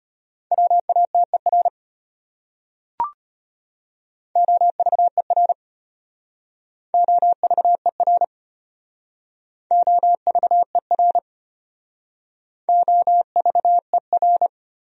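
Rapid Morse code at 25 words per minute sending common words from a top-100 word list: a steady mid-pitched tone keyed into quick dits and dahs, sent as five short word groups separated by pauses, with one brief click early on.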